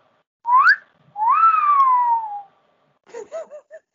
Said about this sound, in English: probably now an unacceptable way to herald a woman's attention with a wolf whistle.